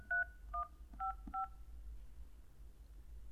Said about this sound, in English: Please enter your 5-digit zip code using your phone's keypad now. All right, I'll use my keypad.